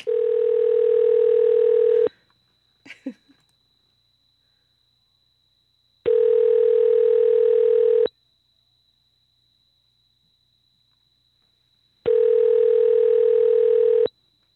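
A steady electronic telephone tone sounds in three loud two-second bursts separated by longer silent gaps, with a single brief click shortly after the first burst and no voices.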